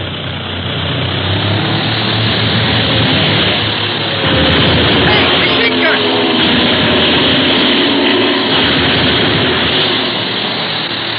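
A propeller airplane roars loudly and steadily throughout as it dives and fires its machine gun, its engine noise swelling and growing harsher partway through, with a rough, rattling texture layered over the drone.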